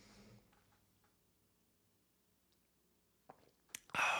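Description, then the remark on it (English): Someone sips a drink: a long quiet stretch with faint mouth clicks, then a few sharp clicks and a loud, brief slurping rush at the end. No talking. “Let me take a sip.”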